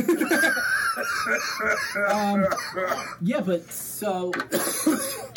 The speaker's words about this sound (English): Making me cough.